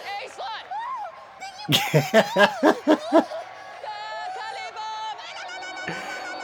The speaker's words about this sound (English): You can hear the crowd boo.